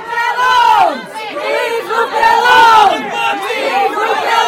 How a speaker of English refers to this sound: The police move in to arrest her, and then things go kind of crazy. The crowd starts chanting. People start standing on their chairs.